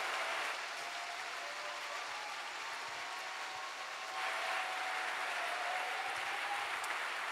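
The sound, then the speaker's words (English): A church audience gives a clap offering to receive Reverend Dr. Mensa Otabil, clapping steadily in a dense, sustained wash of applause at an even loudness that swells slightly toward the end, with no voices heard over it. “with a clap offering. Let's receive the man of God, Reverend Dr.”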